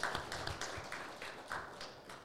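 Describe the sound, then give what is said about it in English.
A small live audience claps in a steady patter of overlapping hand claps, fairly quiet and even throughout, with no voices over it; real applause, not canned. “That is not, in fact, canned applause.”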